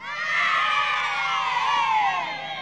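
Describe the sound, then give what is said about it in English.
A comedy crowd-cheer sound effect: a crowd cheers and whoops loudly for a couple of seconds, a dense burst of many high excited voices and shrieks that holds steady, then eases off slightly at the end. “I suppose at this point we should play in the comedy cheer.”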